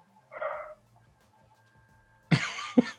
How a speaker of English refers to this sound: No, all I hear is dogs. That's loud and good.